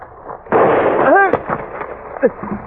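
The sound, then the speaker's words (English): A single sharp gunshot bursts out suddenly among trees in late afternoon and rolls on in a loud, rumbling decay; the bullet strikes a man in the thigh. A short rising and falling vocal cry follows, then quieter scattered sounds. “The bullet had slammed into the fleshy part of my thigh and passed clear through.”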